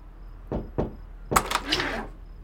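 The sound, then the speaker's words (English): Two dull knocks on a motel room door in quick succession, followed by a louder, rattling thump with a brief clatter that trails off. “Just don't knock.”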